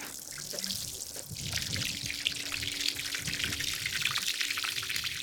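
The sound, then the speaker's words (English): Water runs steadily from the pipe of a solar-powered well used to water cattle on a ranch, a continuous splashing trickle with a bright hiss, with no one speaking. A faint low hum sits underneath partway through. “This is our solar well to water our cattle and get drinking water sometimes if we lose power at the ranch.”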